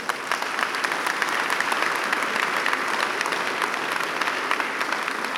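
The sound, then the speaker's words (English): An audience applauds the mothers steadily, a dense wash of many hands clapping at an even level for several seconds with no voices standing out. “So a wonderful round of applause for the mothers.”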